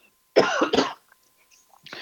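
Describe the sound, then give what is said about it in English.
Two loud coughs in quick succession, followed by a brief pause and the start of a third rough cough or throat-clearing at the end. “And getting to know, excuse me, I'm going to cough here a second,”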